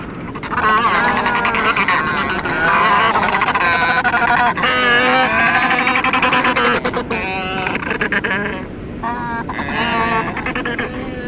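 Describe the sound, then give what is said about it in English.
A dense, raucous chorus of Royal Penguins braying and honking at Nuggets Beach on Macquarie Island, recorded October 1975. Many loud harsh calls overlap continuously, with squabbling bursts as birds display and fight, including multiple and dual fights and single and two-bird displays. “Royal Penguin, braying, display and fighting, includes multiple fight, dual fight, single bird display, two bird display, recorded 10th of October 75 on Macquarie Island at Nuggets Beach, duration 3 minutes.”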